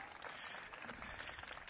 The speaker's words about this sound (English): Let's give the cast again a round of applause for their performance.